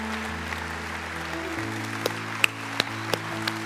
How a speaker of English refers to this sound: You keep clapping. So proud of you guys.